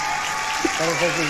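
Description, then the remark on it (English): An audience claps in a steady, dense wash of applause, and partway through a voice begins speaking over the clapping. “Clap.”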